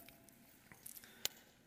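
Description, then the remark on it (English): Quiet wet mouth sounds of someone sipping and swallowing water: small soft clicks and squishes, then one sharper gulp near the end, with no talking. “I've had to drink a lot of water the last 2 weeks.”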